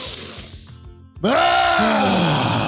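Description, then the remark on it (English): An airy deep breath in, a brief pause, then a loud, long exhale that turns into a deep voiced sigh, almost a groan, trailing off slowly. “Breathe with me. Deep breath.”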